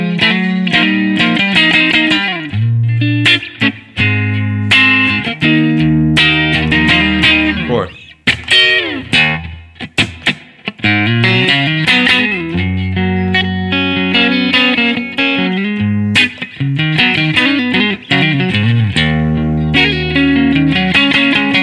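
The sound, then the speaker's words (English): An electric guitar with a quacky, nasal tone plays busy, rhythmic chord stabs and licks, loud with no voices, the bright midrange chirping on each strum. “It's got that sort of quacky sort of. Almost that like sort of … thing.”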